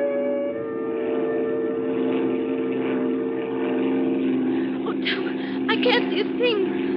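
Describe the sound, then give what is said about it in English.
A propeller airplane engine drones steadily and loudly in flight in rough weather, heading in to land, for the whole stretch, a constant low hum, with a voice briefly speaking over it near the end. “Now, don't worry. I don't need lights to land.”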